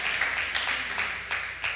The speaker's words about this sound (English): Now, you clap if you want.